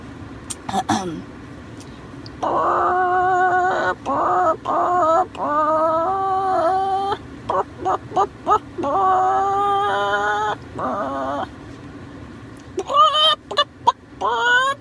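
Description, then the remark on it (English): A person imitates a chicken, making a run of loud, nasal clucks and squawks in uneven bursts, with a sustained warbling cackle in the middle and sharp clucks near the end. “I make animal noises. Only a few. Let's not get carried away. My chicken.”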